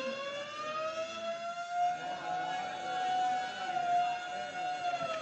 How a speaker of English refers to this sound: And suddenly the quiet routine of the prison is broken by frantic bells and the shrieking wail of the siren.